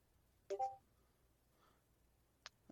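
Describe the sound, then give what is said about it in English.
A brief Discord chat app notification beep, a quick two-tone electronic blip, sounds once against near silence. A few faint sharp clicks follow a couple of seconds later. “So what do you think about all this news, Discord notification beep?”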